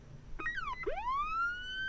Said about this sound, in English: It was kind of a siren of some description. Sounds like a really little siren. Yeah, it was a tiny siren.